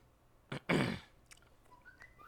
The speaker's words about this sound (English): What's whistling? Oh, I've got a device across the room that's deciding to whistle at me for no reason.